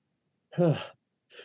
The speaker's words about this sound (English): Sorry, got to sneeze.